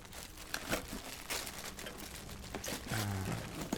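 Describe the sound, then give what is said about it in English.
Gift wrapping paper crinkles and rustles in a steady run of crisp, papery crackles as a gift is unwrapped, with a few sharper bursts and a brief lower scrape near the end. The sound is moderately loud and unaccompanied. “I always think of wrapping as a big part of the gift giving.”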